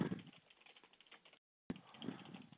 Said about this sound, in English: Sorry about that. I'm just typing along.